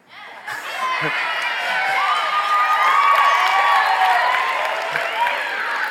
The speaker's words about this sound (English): Not supposed to cheer for that.